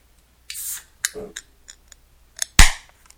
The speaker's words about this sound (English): I'm just going to tell you the beer right away. Let me open it. 1 second, here you go.